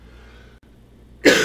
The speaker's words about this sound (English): Pardon my cough.